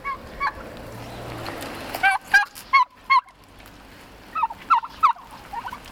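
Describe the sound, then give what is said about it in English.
Hand-raised turkeys gobble in two bursts of rapid, warbling calls, with a few scattered shorter calls and a low outdoor background rumble between them. “they have a beautiful blue face and an orangish red head. And they're very docile.”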